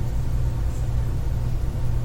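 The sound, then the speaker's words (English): A steady, deep rumble fills the inside of a moving black Suburban SUV by day, part of a three-car convoy heading down a street, constant and unbroken for the whole stretch, with a faint airy hiss on top and no voices. “Interior black suburban day.”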